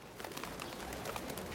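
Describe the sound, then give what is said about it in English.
Pigeons on a windowsill coo softly and continuously against a steady hiss of background noise, their low murmuring calls overlapping without a clear rhythm, fairly quiet. “Truly, the pigeons on our windowsill are getting real peckish.”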